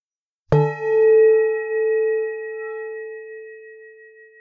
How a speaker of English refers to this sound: Close your eyes, and I'm going to ring a bell. And I just want you to note when the sound ends. And just raise your hand slightly, just to acknowledge when that sound ends. So I'll ring a bell. And when the sound ends, you raise your hand.